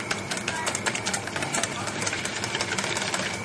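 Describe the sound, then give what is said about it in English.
Eggs seasoned with a little salt being whisked briskly in a bowl for an omelette, a fast, steady rattle of clicks and scrapes that keeps an even rhythm from start to finish. “Give them a good whipping, because it gets some air into them.”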